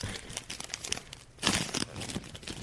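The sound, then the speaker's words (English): Crinkly plastic chip bags, bought with a street-vendor hot dog lunch, being pulled open in an office, a busy stream of crackling and rustling with a loud tearing burst partway through, no voices. “We ordered hot dogs in today for lunch from a street vendor and, got a bunch of bags of chips as well.”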